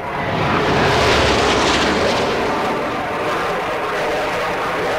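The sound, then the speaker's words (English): A loud, steady jet engine roar from a passing U-2 spy plane, swelling in the first second and then holding a broad, rushing drone to the end, with no voices. “The U-2, which is still in service today, by the way, is an extraordinary plane. It could climb far higher than other aircraft.”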